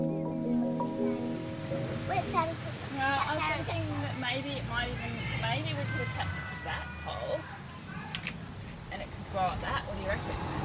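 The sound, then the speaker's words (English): Backyard ambience recorded on an audio recorder, with a steady roar of traffic and the low engine rumble of aeroplanes overhead, while voices, including neighbours, talk and chatter over the constant background noise. “I can't believe how loud the traffic and neighbours and aeroplanes are when I listen back.”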